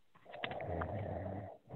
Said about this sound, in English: Is someone sleeping or snoring? I'm thinking. Well, I'm not really snoring. I was maybe snoring a little bit.